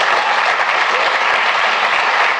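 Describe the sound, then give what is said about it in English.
Loud, steady applause from an audience responding to Joe Biden's remark that an electric car can be plugged into a house to power it, a dense wash of many hands clapping at once without a break, with no voices standing out above it. “And by the way, they applaud.”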